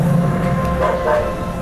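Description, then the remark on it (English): Video game dogs near Uptown Jewelers bark aggressively, a couple of loud, harsh barks rising over a dense, steady background din, with no talking. “Blimey, those dogs is getting vicious.”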